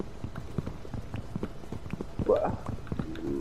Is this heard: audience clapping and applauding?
no